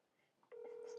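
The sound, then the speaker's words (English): A phone call ringing out over a speakerphone: after a quiet moment of faint background noise, a steady electronic tone cuts in halfway through and holds, loud. “Call him.”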